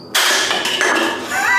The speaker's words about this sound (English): I just threw a pop can at the cricket. We don't want background noise.